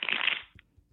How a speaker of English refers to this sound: These cards are getting shuffled. Yeah, they're getting shuffled.